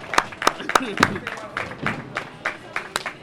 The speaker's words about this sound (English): So please give a big round of applause for my boy